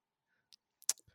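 A handful of sharp, irregular keyboard key clicks, one noticeably louder than the rest, tapping close by in an otherwise quiet moment with no talking.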